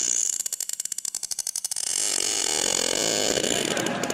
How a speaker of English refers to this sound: Well, for anyone listening who doesn't know about sperm whales, well, you've learned a lot more now, but this is what they sound like.